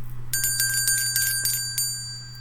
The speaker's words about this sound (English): Let's ring that bell for that book. Ring it, baby.